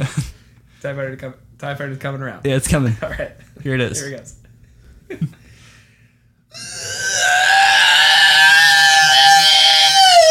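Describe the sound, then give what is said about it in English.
A person talks briefly, then a voice imitates a TIE Fighter coming around the corner: a loud, sustained, high-pitched vocal screech holding steady for about four seconds until the end. “Do you want me to do the TIE Fighter noise?”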